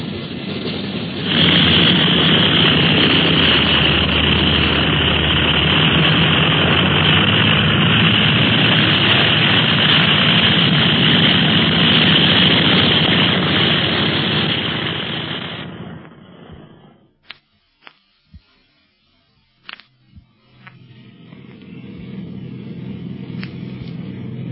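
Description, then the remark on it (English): Airplane engines roar loudly and steadily for about fifteen seconds, then cut off abruptly; a few sharp clicks follow, and a softer, lower engine hum resumes near the end. “You can hardly hear the motors back here in the cabin.”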